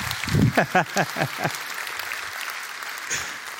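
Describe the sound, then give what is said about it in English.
An audience claps together in unison, about seven or eight sharp, evenly spaced claps in a quick steady rhythm, then the clapping stops and a soft murmur of the crowd remains. “Let's clap all together.”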